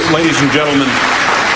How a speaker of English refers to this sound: Ladies and gentlemen, the applause are lovely, but we will not have booing.